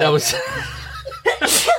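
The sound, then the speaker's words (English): A loud sneeze bursts out after a short intake of breath, with breathy laughter and vocal noises from people around it. “Bless you. Thank you.”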